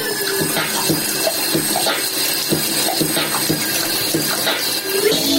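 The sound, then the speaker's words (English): A shower runs in a steady, hissing rush of water, with thin squeaky whines from the pipes threading through it. No one speaks. “This is a shower with some squeaky pipes.”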